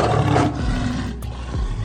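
A single deep, rumbling big-cat roar, loud and close, with a rough growling texture that swells and fades over a couple of seconds, no voices present.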